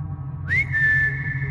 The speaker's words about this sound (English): I've heard it. Her. The whistle.